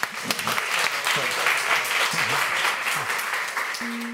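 Steady applause from an audience: a dense, even wash of many hands clapping that holds at a constant loudness for several seconds, with faint voices murmuring underneath.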